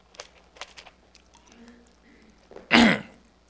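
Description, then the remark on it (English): A single loud, harsh cough or throat clearing bursts out over a microphone near the end, preceded by quiet clicks and faint shuffling sounds. “I've been coughing over this mic.”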